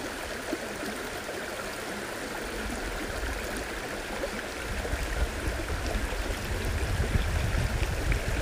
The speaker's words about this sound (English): I hope you're in a comfortable place and closing your eyes, ready to relax to the sound of the stream, a place where you won't be disturbed and you can fully enjoy the experience in nature.